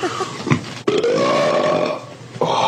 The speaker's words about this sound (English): Fucking king ass ripper right here. Hairy and gross. Fucking start sending me some gassy ass beans so I can make these farts even bigger. Yes. I challenge any of you think you can fart bigger than me.